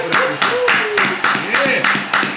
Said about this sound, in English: What's up? You gotta clap it up for yourself.